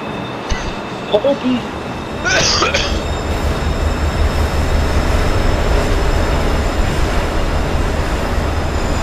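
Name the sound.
train passing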